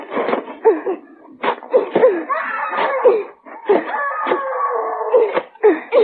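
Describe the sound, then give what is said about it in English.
A woman screams and wails from underground in long, wavering cries that rise and fall in pitch, broken by short sobbing gasps, loud and continuous for about six seconds with no speech. “Hey, what's the screaming woman's name?”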